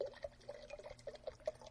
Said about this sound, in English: So first thing is we just have a bunch of salt, and you can just pour a ton in there. Then we're going to get our water, good, clean, fresh, purified water, and we're pouring that in.